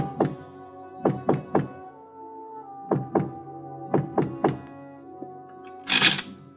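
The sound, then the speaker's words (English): Someone knocks on a door in short bursts, three raps, then two, then three more, solid with pauses between, followed by a brief rustling hiss. “And then we came to a door, and Eiling knocked.”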